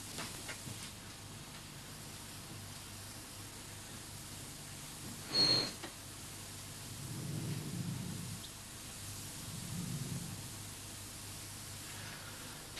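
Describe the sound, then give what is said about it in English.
Steady radio receiver static hiss fills the whole recording, broken by one sharp crackling burst midway and a couple of soft, low rumbling swells later on. No one speaks. “I'll see if there's any change in the hiss.”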